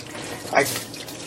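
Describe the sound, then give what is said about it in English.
Hot water runs from a tap in a steady hiss, used to soak a piece of bread, swelling briefly into a louder splash partway through before settling back to an even flow. “So I got real hot water. And I really sponged it up.”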